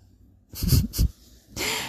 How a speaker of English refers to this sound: The dog is snoring next to me.